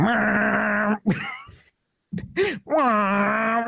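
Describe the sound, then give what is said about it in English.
A voice imitates a Honda Civic with a fart-can muffler: a loud, nasal, buzzing drone, a short break, then revving bursts that rise and waver before settling into another steady buzz. “So exactly, that's what a Honda Civic sounds like with a fart can.”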